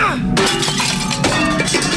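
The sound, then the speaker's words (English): Glass smashes loudly as a pasta pot thrown across a kitchen smashes a framed photo, with a sharp crash followed by a second burst of breaking and scattering shards that keep tinkling through the rest of the moment. “I threw the pasta pot across the kitchen and smashed the framed photo of us on our second anniversary, taken back when we still smiled while standing next to each other.”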